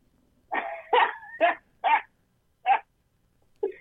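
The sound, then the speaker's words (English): A dog barks about six times in short, sharp bursts, quick at first and then more spaced out, sounding loud with no one speaking. “That's the smartest damn dog that I've seen.”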